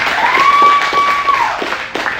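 An audience applauds with dense, steady hand clapping that holds at a fairly loud level throughout, while a sustained high whistle-like tone rings over the first half.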